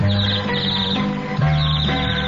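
A bird whistle, played by a woman, trills in quick, high warbling chirps that imitate birdsong, carried over a steady musical backing with sustained low tones, fairly loud throughout.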